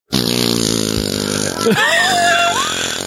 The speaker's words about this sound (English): Alexa, give me a difficult fart. Here comes a difficult fart.